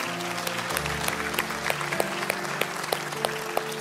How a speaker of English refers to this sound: Amen. Can we give God a round of applause today?